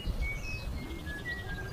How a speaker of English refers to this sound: That's when Peter heard a tune being whistled, coming from the kitchen. So he peeped in to see two budgies sitting in their cage, bobbing their heads as one of them whistled a tune.